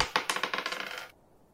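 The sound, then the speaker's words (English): Dice clatter across a hard tabletop for a dexterity roll, landing a natural one, in a quick run of bright clicks that fade as they settle, lasting about a second before silence, fairly quiet with no voices. “Make a dexterity roll.”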